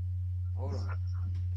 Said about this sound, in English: I'm hearing a real bad hum. Is that, where's that coming from?